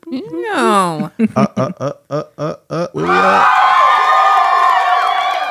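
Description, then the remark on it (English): A rising whoop leads into a quick run of rhythmic shouted bursts, then a loud, sustained crowd cheer with whistles and yells fills the rest of the moment. “Clap it up for us.”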